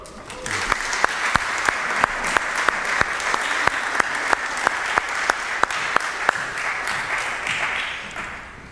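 An audience applauds steadily for about nine seconds, a dense wash of clapping with sharper individual claps popping out at a regular beat before it tapers off.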